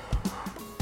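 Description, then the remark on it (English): A sharp, breathy sneeze bursts out loudly at the very end, preceded by a few softer short huffs and catches of breath. “Bless you.”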